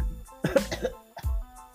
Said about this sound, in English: I'm sorry, I coughed a bit.